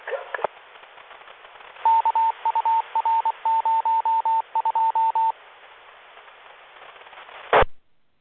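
Band-limited radio static from a CB station repeater monitored at 476.475 MHz carries a run of steady, beeping tones around one pitch, grouped in quick bursts, then a sharp click as the transmission cuts off. No one speaks.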